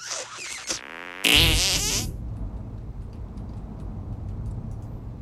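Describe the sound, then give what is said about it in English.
A short, sputtering fart-like sound effect from a video game, buzzing and wavering for about a second, followed by a low steady rumble of background game noise with no talking. “Leaky. It needs more surface tension.”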